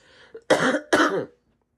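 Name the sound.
coughing fit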